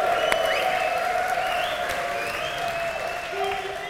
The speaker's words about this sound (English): All right, ladies and gentlemen, and now it's time for some correspondence. There we are. That's got to get a round of applause. Round of applause.